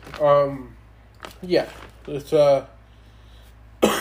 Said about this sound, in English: Sorry, I'm coughing a lot, guys. When I did the sports podcast, I wasn't coughing this much. Just got a cough drop and a beverage, so hopefully that helps.